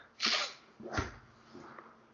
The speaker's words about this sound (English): Got a little sniffle over there or what, man? Yeah, I guess so. I don't know why.